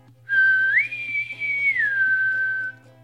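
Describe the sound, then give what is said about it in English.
A coded whistled message being broadcast: one long, clear whistled tone that steps up in pitch, holds, then glides back down, over a steady low hum and faint repeating background tones. “Yallcomeback Whistlers have this message to broadcast.”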